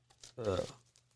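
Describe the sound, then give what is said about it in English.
A brief crinkle of a sheet of paper being handled, one short rustling burst lasting under half a second, with a faint voice murmuring around it. “It's probably on this paper right here.”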